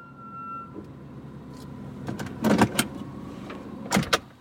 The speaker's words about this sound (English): We had no idea where he took us at that point. The car finally stops in front of a house.